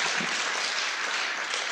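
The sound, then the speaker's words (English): A church audience claps steadily for a couple of seconds, a dense, even wash of many hands with no voices. “I thought you'd give a clap and say amen.”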